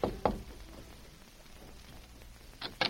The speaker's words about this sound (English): It was about a half an hour later when Northcott rapped on the door of Powell's house.